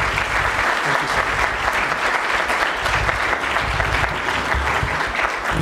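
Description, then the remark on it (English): Sustained audience applause at CSIS, a dense, steady patter of many hands clapping at a fairly loud, even level for several seconds, with no voices standing out, welcoming Adam Smith, Chairman of the House Armed Services Committee. “Would you please, with your applause, welcome warmly the Chairman of the House Armed Services Committee, Adam Smith.”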